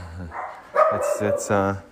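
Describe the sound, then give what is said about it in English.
Dogs bark several times in quick, uneven succession, loud, with a person's voice talking underneath the barking. “There kind of could be, but those dogs will interfere and make it impossible.”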